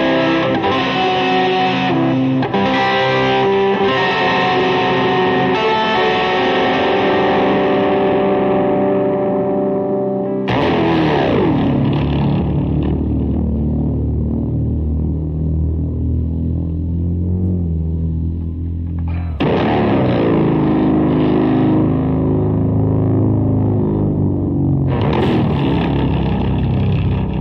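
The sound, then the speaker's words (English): Electric guitar drenched in delay and chorus with no distortion, ringing chords that shimmer and smear into long echoing tails, with a few fresh strums breaking in. Loud, with no talking. “Like I was saying earlier, I love effects. I love delays. I love chorus. I love all that stuff. Like this, to me, this is awesome.”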